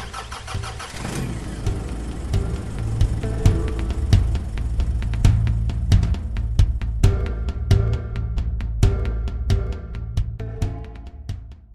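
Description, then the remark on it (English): A car engine cranks over as the driver turns the ignition, with a brief grinding burst, catches, and settles into a steady rumbling idle with faint rhythmic ticks and knocks. No one speaks. “After getting settled in the car, Lindsay takes another look at James and turns the ignition.”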